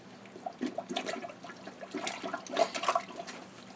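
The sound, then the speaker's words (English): Repeated wet sloshing and gurgling bursts from a plunger working a clogged toilet, water splashing and churning in an uneven rhythm, moderately loud, with no voices. “I'll just let the toilet speak for itself.”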